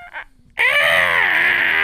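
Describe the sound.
A voice imitates Godzilla's screech: after a brief soft sound and a short pause, a loud, sustained, harsh high-pitched cry with strong harmonics holds steady for over a second.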